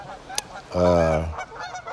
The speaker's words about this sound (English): Oh, these geese.